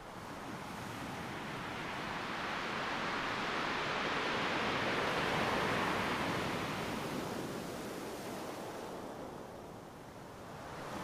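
Steady ocean surf washes onto a beach, a broad hiss that swells gently toward the middle and eases off again, continuous with no voices.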